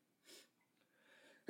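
A single sneeze: a breathy inhale builds, a brief pause, then a sharp, loud burst cuts in at the very end. No one speaks.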